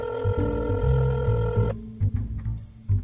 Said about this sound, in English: You blackmailed me into whoring myself to get bare-ass naked with this lard-ass, and now you won't answer your phone?